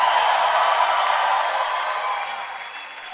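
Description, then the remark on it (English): An audience claps their hands and shouts for the Lord together, a dense, continuous wash of applause and cheering that holds steady and then gradually tapers off over a few seconds. “Clap your hands for the Lord and give the Lord a shout.”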